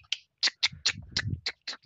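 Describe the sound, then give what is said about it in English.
Cockpit buttons above a pilot clicking during pre-flight checks: roughly eight crisp, bright clicks in an uneven rhythm, with soft low thumps underneath partway through. No one speaks. “You know, you hear the clicking of the buttons above him and his hands are just...”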